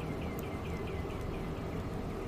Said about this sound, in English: I hear a really weird sound, and I don't know if that's outside or... It sounds like a bird. I don't know.